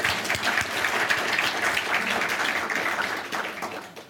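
An audience at a session about the book This Mortal Boy applauds steadily, a dense wash of many hands clapping at an even, fairly loud level that holds for several seconds before easing off slightly at the end.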